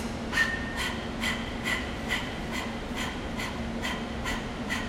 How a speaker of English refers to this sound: Your inhale is just automatic and your exhale is forceful, almost like your tongue is out like a dog and you're panting.